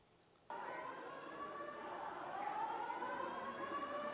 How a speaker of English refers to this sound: And because it blew out the sprinkler, then the fire alarm goes off. Check this out.